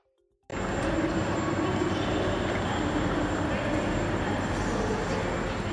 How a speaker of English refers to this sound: There were more trains running, but there were definitely fewer passengers getting on or off at Waterloo Station.